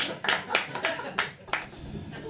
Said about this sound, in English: I like the ones where people clap and don't laugh. Those are my favorite jokes.